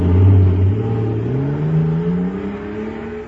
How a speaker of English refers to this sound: Wow! Listen to that fire control jet car go now. It's supercharged, that's what. Supercharged with super fuel.